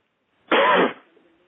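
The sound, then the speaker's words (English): A single deep, harsh cough with a rough throat-clearing quality bursts out loudly for about half a second, then fades into a faint, low rasp. “Take a deep cough now. Cough them out.”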